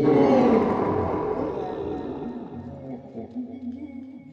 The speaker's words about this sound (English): snatching them suddenly up, he seized with them the capacious nose of the devil, who roared so loud that the whole neighborhood rang with his bellowing.